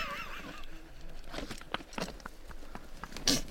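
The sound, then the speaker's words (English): A four-week-old cougar kitten hisses and snarls in a series of short, harsh, breathy bursts as it swings at a person's face, with one louder, sharper hiss near the end and no talking. “Took a swing at you. Yeah, that was a hiss. Snarl.”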